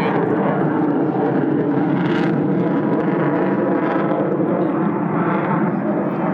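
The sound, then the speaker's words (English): A small airplane engine drones loudly and steadily as the plane goes down in a flat spin, a thick rumbling roar with a buzzy hum that barely changes over several seconds, continuous with no voices. “That's usually a bad thing when you do that. Yeah. Down in a flat spin.”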